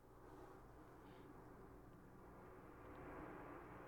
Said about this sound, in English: Did you hear that? That's a jet. Air show. Whoa! Or maybe it's a bombing. Duck and cover. The times we live in. Wow, it was a jet. Or something.